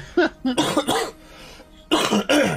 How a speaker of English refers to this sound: And excuse my coughing. I'm still getting over COVID because I got COVID during our time off, which was fun.